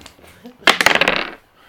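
Dice rattle and clatter across a hard surface in a quick burst of sharp clicks lasting under a second, fairly loud, with faint background noise before and after.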